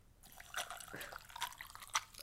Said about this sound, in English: That is crushed ice. Yeah, right. Perfect. Wait. And water. Wait.